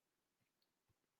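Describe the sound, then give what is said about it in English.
A few faint, soft clicks of a computer mouse spaced irregularly, ending with one sharper, louder click; quiet, with no talking. “He's just clicking on things for the sake of it.”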